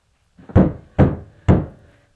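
Three firm, evenly spaced knocks on a door from outside, each with a short dull resonance, sounding somewhat muffled and heard alone with no voices.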